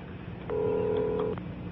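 household object, telephone number being dialed

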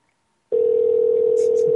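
signal or alarm, telephone dial tone

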